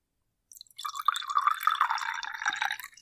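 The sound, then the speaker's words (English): Oaked black cherry mead is poured into a glass, a steady splashing, gurgling stream that starts after a brief pause and runs for a couple of seconds with no talking. “Let me pour a little more.”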